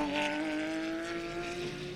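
The number 64 race car roars past on a drying track in rising wind, its engine a loud, sustained buzzing whine that dips slightly in pitch as it goes by, with no voices over it.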